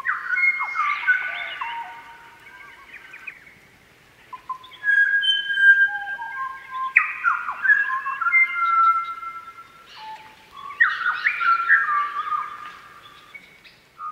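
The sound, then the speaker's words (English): A songbird practicing its song by itself, a rambling series of clear, fluting whistled phrases, pausing between bursts and varying its notes as if rehearsing, heard alone with no talking. “And they have to do it, it seems, they have to do it vocally and hear themselves call rather than just think it in their brain, which makes plenty of sense.”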